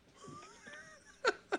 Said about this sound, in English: Someone's breathing into the mic, into the phone.